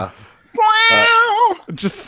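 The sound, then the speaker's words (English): A person lets out a loud, drawn-out yowl imitating a cat in heat, one wavering cry lasting about a second, with brief vocal sounds just before and after. “That just sounds like a cat in heat.”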